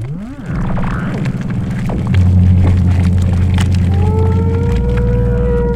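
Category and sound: animal, whale vocalization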